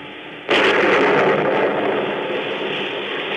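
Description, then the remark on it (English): A steady roar of stormy sea and wind off the coast of Maine breaks into a sudden loud thunderclap, which keeps rumbling heavily and fades only slowly. No one speaks. “a killer who, as our story opens, is fighting desperately and alone against a raging storm off the coast of Maine.”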